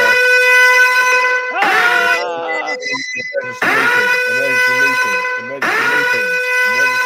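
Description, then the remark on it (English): A loud, blaring alarm sound effect with a buzzy, horn-like tone, sounding in repeated blasts about every two seconds, each onset swooping in with a wavering pitch. “Sounds like the fire alarm going off in the hallway.”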